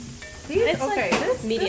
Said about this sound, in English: She's frying these things inside and out.